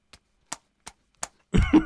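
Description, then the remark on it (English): Four sharp slaps, made to illustrate someone attempting to walk, land at an even, steady pace, each a brief crisp smack, before a voice starts talking over the end. “That slapping noise is not something unwholesome, audience.”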